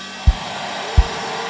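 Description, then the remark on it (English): A church audience at YMR, Redemption City, shouts "Amen" as loudly as it can, forming a steady, dense roar that holds for the whole moment, broken by two dull low thumps less than a second apart. “Everybody at YMR, here at Redemption City and across the world, will you shout the loudest, Amen!”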